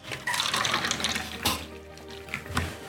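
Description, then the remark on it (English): Coffee splashes and trickles steadily into a cup for a few seconds, a bright pouring sound with a couple of sharper clinks or spurts near the middle and end. “Do we want another splash of coffee?”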